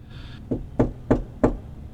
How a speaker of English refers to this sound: The knocking, again, it's not a banging, it's not aggressive, but the sound of the knock echoes and reverberates as if in a massive chamber.